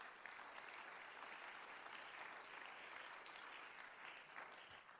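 Sustained applause from a sizable church audience during a sermon, a dense, steady patter of many hands clapping at once, fairly loud and even throughout with no voices standing out.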